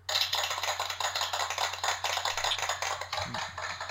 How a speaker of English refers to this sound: welcome, Brussels, thanks for coming out, let me get you a round of applause here.